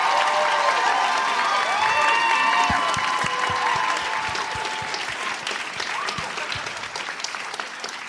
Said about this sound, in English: Well, after that round of applause, I'll take Breaking Bad.